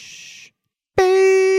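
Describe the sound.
A short breathy hiss, a brief silence, then a loud, steady, bright tone held at one pitch, a voice singing a jingle-like note in imitation of transition music.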